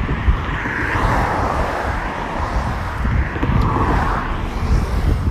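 A steady, loud rush of traffic from many passing cars fills the whole stretch, a broad low roar with gentle swells as vehicles pass, with no voices over it.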